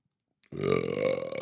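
A single long, low, gurgling burp after a huge sip of beer begins abruptly after a moment of silence and rumbles on steadily for about a second, loud and unbroken with no talking.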